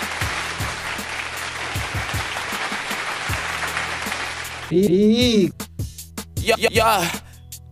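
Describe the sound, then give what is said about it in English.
A steady burst of audience applause for the contestants at the end of a game, dense clapping for about five seconds, then it gives way to loud, rising and falling vocal whoops and cheers. “Let's give a round of applause for our contestants.”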